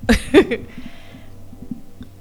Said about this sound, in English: Excuse me. Ooh-wee. I got the burps.